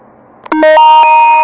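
After a brief quiet hiss, a GE (General Electric) programmable door alarm bursts on with a few quick stuttering chirps, then settles into a loud, steady, high-pitched electronic tone that keeps sounding.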